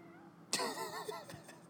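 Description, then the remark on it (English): A single drawn-out meow from a male pet cat with a wavering pitch, heard fairly softly against a quiet background, no talking. “You heard my cat in the background.”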